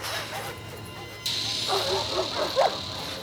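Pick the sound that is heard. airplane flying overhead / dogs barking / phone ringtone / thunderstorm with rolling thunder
dogs barking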